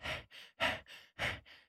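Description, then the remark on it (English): A person imitates panting with three quick breath pairs, each a sharp breathy exhale followed by a softer inhale, fairly loud in a steady rhythm with no words. “And then he grabs it really quick and jumps on top of the desk and is panting, waiting to see what's going to happen.”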